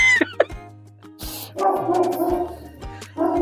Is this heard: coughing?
no